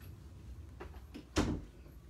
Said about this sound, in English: Hold on, I'm going to close the door.